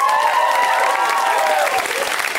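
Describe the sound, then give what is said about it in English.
An audience at the comedy show Put Your Hands Together claps steadily and loudly, a dense patter of applause with whoops and cheering voices rising over it, holding at full strength for a couple of seconds. “That was garbage as a round of applause.”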